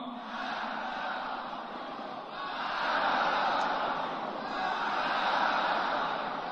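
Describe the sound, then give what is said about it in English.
A large crowd shouts the chant "death to America" together, a dense, loud roar of many voices that swells and surges in waves throughout, with no single voice standing out. “Well, that's the crowd at the end just shouting death to America.”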